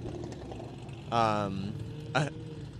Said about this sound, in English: So an I-30N just drove by. Did you hear that? Yeah. The stock exhaust on those sounds really good. Pops and bangs.